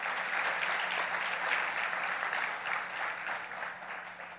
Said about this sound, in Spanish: ¿Cuántos pueden aplaudir al Señor?